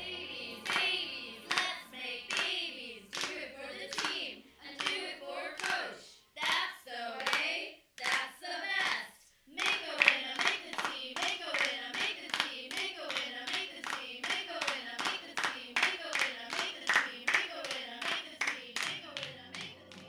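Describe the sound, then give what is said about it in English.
Sharp, rhythmic hand clapping from a group, steady, building into a faster, denser pattern after a brief pause midway, with some voices mixed in like a squad cheer. “I will never forget that cheer.”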